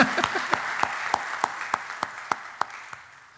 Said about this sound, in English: Let's clap about that. I'm all for that.